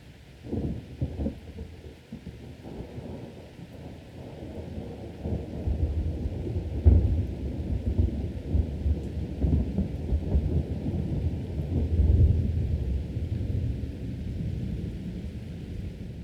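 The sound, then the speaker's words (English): A thunderstorm at night rumbles steadily, deep rolling thunder swelling louder around the middle and again later, with a constant low roar of rain beneath it and no voices. “On a dark and stormy night, the men at the Hellfire Club were enjoying a game of cards when there were suddenly three loud knocks on the door.”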